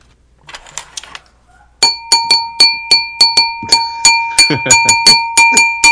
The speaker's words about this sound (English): This is a nice glass, isn't it? It has resin. Yeah. It has some kind of resonance to it.